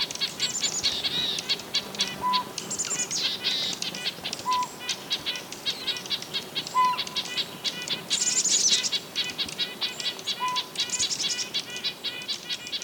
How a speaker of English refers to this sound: This angry mob of birds includes some red-breasted nuthatches, mountain chickadees, and dark-eyed juncos. They're annoying as heck, but you just keep on tooting away.